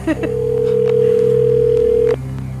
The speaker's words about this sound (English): And for people who had already sent us a story, is your phone nearby? And is it ringing? And please answer.